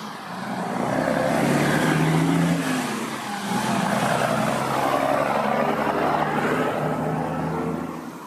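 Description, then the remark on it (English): A big truck roars past, its heavy engine rumble swelling loudly, dipping briefly, then surging again before easing off, with no voices present. “You want to hear a big truck?”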